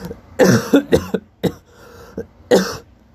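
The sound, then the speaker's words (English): A man coughs in a rough, uneven fit: a cluster of harsh, raspy bursts, a brief lull, then one more loud hacking cough near the end, with no talking. “Excuse me. Oh man, let me get a drink of water.”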